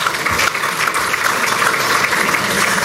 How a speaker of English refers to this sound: So we welcome you to the City Club. That was your opportunity to clap.